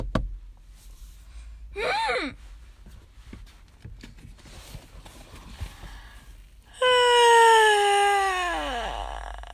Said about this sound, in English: I'm yawning.